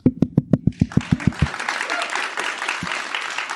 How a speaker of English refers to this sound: Yeah, yes, and thank you for the prompted applause there. That's really appreciated.